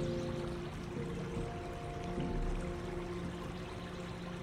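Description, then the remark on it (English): Gentle water waves lap and swirl around a rowboat in a steady, continuous wash, soft, with a faint low hum underneath and no voices. “The perfect position to lie back within this rowboat as you fully surrender to the soothing sounds of the waves.”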